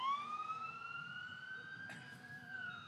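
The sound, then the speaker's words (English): An emergency vehicle siren passes with a long, steady wail that slowly climbs in pitch and dips near the end, carried over a low rumble of traffic with no voices. “You might just pause for a second as the siren goes by.”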